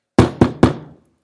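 Three firm, evenly spaced knocks on a wooden front door while trick-or-treating at about 7 o'clock in the evening, still in daylight, loud, each with a short resonant decay, then quiet.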